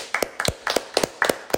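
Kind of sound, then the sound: crowd, hands clapping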